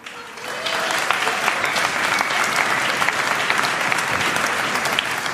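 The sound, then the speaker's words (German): An audience claps steadily as production crew members are thanked, a dense wash of many hands that swells in the first second and then holds at a fairly loud, even level throughout. “Einmal bitte nach da Applaus.”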